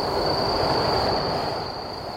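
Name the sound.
passing train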